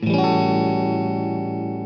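A single A13 chord struck on a keyboard, its rich, effect-laden tone with a chorus-like shimmer sustaining steadily and fading only slightly over about two seconds, with no voices.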